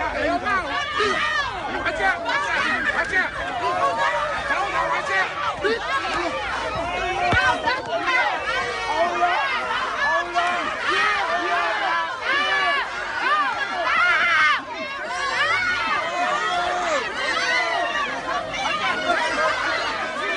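A loud, agitated mob shouting and yelling over one another at close range, a continuous chaotic commotion of many voices with no pause for the full length.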